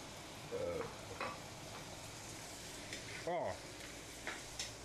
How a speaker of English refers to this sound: The way that hit the pan with the sizzle, yellow side. Wow. Just wow.